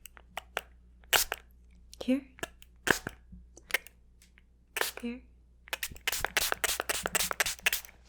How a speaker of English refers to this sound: And now, since you are all soapy, I'm gonna have to spray you down a little with some water just to rinse you off. Okay. I'm gonna spray here.